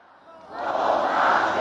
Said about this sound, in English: No more war. The chant was shouted by the 2,500 men and women witnessing a historic moment for Colombia, the signing of a peace accord to end 50 years of armed conflict.